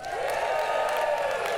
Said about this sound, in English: We want to welcome our Parker campus that's joining us today. So on a count of three, we're all going to cheer for our Parker campus. One, two, three.